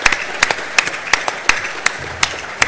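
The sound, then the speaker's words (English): A thin round of applause for a man receiving an iPad prize: sharp hand claps in a steady, unhurried rhythm, about eight strong ones over a softer patter, with no voices. “Round of applause.”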